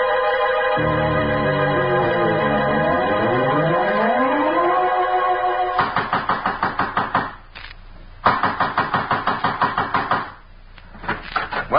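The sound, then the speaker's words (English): Loud, rapid pounding on a door in two long bursts separated by a short pause, coming right after a sweeping, wavering musical tone. No one speaks. “trying to break down the door?”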